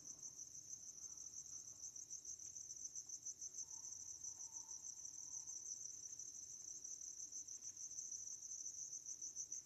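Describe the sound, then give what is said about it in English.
Crickets chirp in a steady, continuous high-pitched drone that runs unbroken for the whole stretch, fairly quiet and even, with no voices or other sounds over it. “What, don't you like the crickets?”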